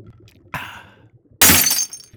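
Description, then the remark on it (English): A cocktail glass of Valhalla Bama Slammer is smashed on the ground after one sip: a sharp crash with a bright splintering tail, then a second, louder burst of shattering glass that rings briefly before fading. “I call it a Valhalla Bama Slammer, which is one part Valkyrie Sweat, two parts Thor's Thunder, and a liter of Southern Comfort, garnished with an orange and a cherry, sip once and then smash on the ground in warrior-like satisfaction.”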